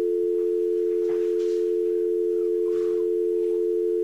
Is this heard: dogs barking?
no